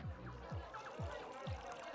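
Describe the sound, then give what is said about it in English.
Juice trickles steadily into a cup, a continuous gurgling pour, while a muffled low thumping beat pulses regularly in the background. “Pour me one?”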